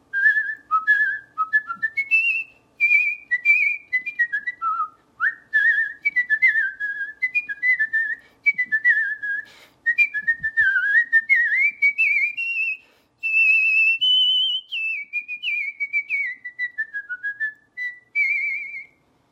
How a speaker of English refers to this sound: So you can, so it's really fun to show people that you don't just have to whistle little tunes. You can actually whistle big, fancy orchestral things.